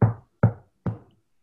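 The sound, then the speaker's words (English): Three firm knocks on a door, evenly paced, each one sharp and woody with a short ringing decay, followed by silence. “She knocks on the door.”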